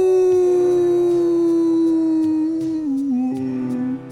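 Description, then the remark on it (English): A person imitates a wolf howl in one long, loud, sustained tone that wavers and slides gradually lower in pitch, with no other talking. “Did you do it? Did you howl?”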